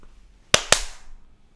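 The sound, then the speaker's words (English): Two sharp hand claps in quick succession, loud and crisp, each leaving a short ringing tail that fades into quiet, made at bedtime to turn off the lights with a double-clap switch. No one speaks. “Hang on, do we have the double clap thing installed?”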